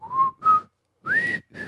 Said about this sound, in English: Anyway, whistling on a podcast. Not great. Not great. We need more windscreen.